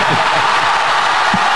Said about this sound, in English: The crowd went wild.